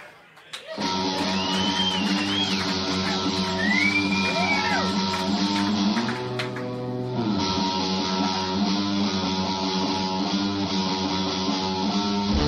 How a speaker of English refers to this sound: Let's give him a round of applause as he comes up. It's Creed McTaggart.